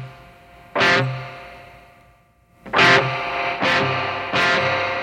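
Distorted electric guitar chords played through the spring reverb setting on the lead setting: one loud strum rings out and decays, then three more strums follow in quick succession, each leaving a washy, lingering tail.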